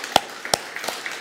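A few scattered, sharp hand claps at an uneven pace, three crisp ones standing out over fainter ones, like a thin smattering of applause for a staff team, with no talking.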